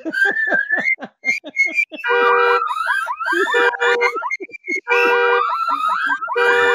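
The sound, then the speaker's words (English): A loud, piercing burglar alarm siren cycles through shifting patterns: rapid rising chirps, then warbling, sweeping wails and steady high tones, continuous with no talking. “this part of the show being brought to you by the Mariah Carey Burglar Alarm.”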